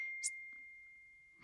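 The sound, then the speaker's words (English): A single quick, high-pitched ding from a notification on a phone set to do not disturb, brief and fairly faint, with a thin steady tone humming underneath and no talking. “You didn't turn your phone off?”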